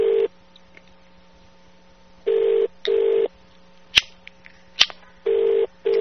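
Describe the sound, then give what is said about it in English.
A telephone ringback tone over the line, repeating in short double bursts with pauses between, thin and slightly muffled, with a couple of sharp clicks in one gap. “Well, it's ringing.”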